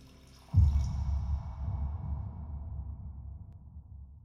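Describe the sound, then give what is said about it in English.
A man pours himself another drink into a glass: liquid starts with a sudden splash, then runs in a steady, low gurgling stream, with no one talking. “Then, satisfied with his afternoon's work, he pours himself another drink.”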